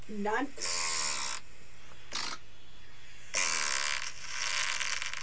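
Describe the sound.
A series of raspy, buzzing fart noises: a short squeaky rising one, then several longer sputtering blasts with brief gaps between them, fairly loud, with no talking.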